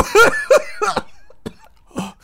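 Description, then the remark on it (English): A person imitates a creature's coughing with a series of harsh, raspy bursts, three close together followed by two fainter, spaced coughs, with no talking. “But a few moments pass, and you keep tapping, and you keep pestering away, and it starts coughing.”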